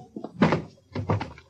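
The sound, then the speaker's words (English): A heavy punch knocks a man out, landing with a dull thump, followed a moment later by a second thudding impact, like a body hitting the floor. No one speaks. “You knocked him out.”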